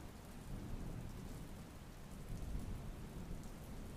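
Steady, dense rainfall in a thunderstorm with a low, rumbling undertone of thunder, holding at an even level throughout with no voices.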